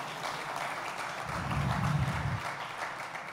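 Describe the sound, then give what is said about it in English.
A large crowd claps steadily in a dense, continuous wash of applause, swelling slightly in the middle with a low rumble before easing back, with no voices standing out. “It's okay to clap in this house.”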